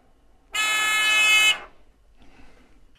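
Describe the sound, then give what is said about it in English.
An electronic buzzer hooked up to an Arduino blares once in a loud, harsh, steady tone for about a second, then cuts off, leaving only faint low rustling and handling noise afterward. “So I just put that on the board, and what I plan on doing is just pulling that out, and I can hook up my buzzer.”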